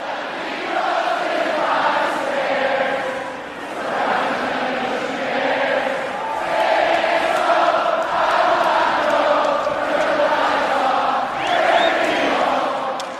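A huge stadium crowd sings along to a song in unison, a loud, sustained wall of voices with melodic swells and brief dips between phrases, no single voice standing out.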